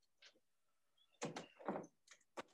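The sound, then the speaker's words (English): A puppy bumps against a door: a cluster of rattling thuds in the middle, followed by a couple of sharper knocks, with no talking. “Sorry, I had to get him before he just had kept hitting the door.”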